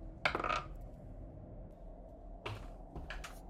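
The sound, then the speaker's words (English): Dice clatter across a table in a sharp rattling burst, then, after a pause, a few shorter clicks and tumbling rattles, rolled for stealth checks. No one speaks. “I rolled a nat 20, so 25.”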